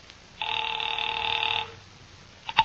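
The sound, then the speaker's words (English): A single steady telephone ring tone sounds over the line for about a second after a call is dialed to Pacific Seaboard Fidelity, then silence, followed by a brief clatter of clicks like a receiver being picked up. “sat down by Amici's pet aversion and doodled with the dial.”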